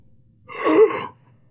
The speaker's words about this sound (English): God, if I wasn't sick, I could do a better gasp.